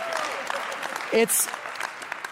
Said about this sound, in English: We got people cheering in the room.